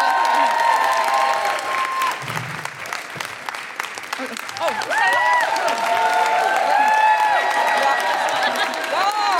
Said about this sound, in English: Okay. Yeah, keep clapping.